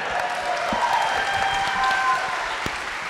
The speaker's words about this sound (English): Thank you for that nice round of applause. Please applaud yourselves.